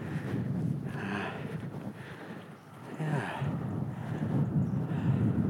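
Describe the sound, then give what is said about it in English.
Strong wind buffets the microphone outdoors among ruined buildings of a grange at Monknash, a steady low roar with gusty swells throughout, and a person briefly speaks once over the blustery noise. “Windy here.”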